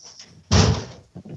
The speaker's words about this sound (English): Hang on a minute. That's what we're hearing. We're hearing the cat door. And the cat's coming in, or are they clawing to get in?